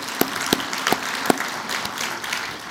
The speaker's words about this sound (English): But before that, can y'all give another round of applause for the students that spoke and the singers this morning? They did such a great job.